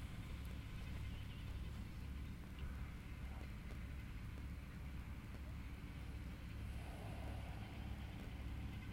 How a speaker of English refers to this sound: And so conveniently there's a tractor mowing the park and getting closer, although it's still a few hundred yards away.